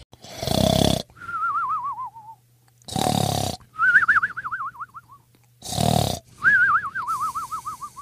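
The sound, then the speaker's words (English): Loud snoring in a steady rhythm: three harsh, rattling inhales, each followed by a high, wavering whistle on the exhale. No one speaks. “They know the scriptures really, really well and snore like a grizzly bear.”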